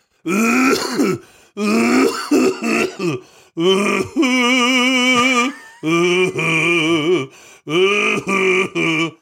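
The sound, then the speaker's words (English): A person makes loud, exaggerated coughing sounds: five drawn-out, strained, groaning bursts with wavering pitch and short pauses between them, no talking. “That's performative coughing, dude.”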